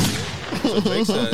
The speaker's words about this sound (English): Gunshots.